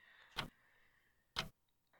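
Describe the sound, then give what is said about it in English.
An old clock ticks slowly and steadily, about one sharp tick each second, clear, with only a faint hum filling the quiet between ticks. “The only sound allowed to echo through its halls was the creaking of old wood and an old clock forever chiming.”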